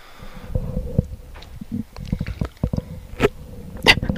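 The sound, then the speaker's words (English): Someone drinks water at a microphone: wet gurgles, squishy swallows and a few sharp sipping clicks over about four seconds, with no talking. “It's tough drinking water with these things, isn't it?”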